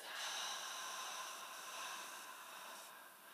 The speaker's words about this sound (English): Taking another nice breath in, seeing if you can really feel all the way into the belly. And a nice slow exhale for six.